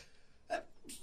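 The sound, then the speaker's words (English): A single short, sharp sneeze bursts out over a faint background, followed by a brief breathy hiss just after. “I was trying to look at you, boy, to get the signal like I'm about to sneeze.”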